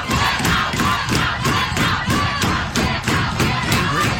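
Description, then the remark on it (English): A large crowd of young people shouts and chants loudly in unison to shout down a constitutional scholar, with a steady, pounding rhythm of about two beats per second that continues without pause and drowns out any single voice. “This is one of the great constitutional scholars of our time they're shouting down, by the way.”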